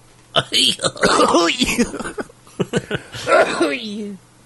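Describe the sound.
A fairly loud fit of coughing and throat clearing from a person who has not spoken for about a week: several rough bursts in quick succession, broken up by strained, voiced groans between them.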